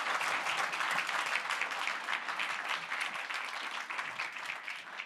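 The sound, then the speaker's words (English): Sustained audience applause for the speakers, a dense crackle of many hands clapping at a steady level throughout, with no one speaking over it. “If we can give a round of applause to our speakers.”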